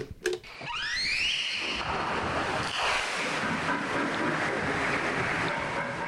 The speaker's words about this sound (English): I think this is a tape of a humpback whale making social calls.